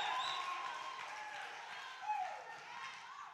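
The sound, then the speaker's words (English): An audience claps and applauds in a steady, dense wash of sound, with scattered voices calling out over it throughout. “And some of you won't even clap.”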